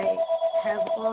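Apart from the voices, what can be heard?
telephone ringing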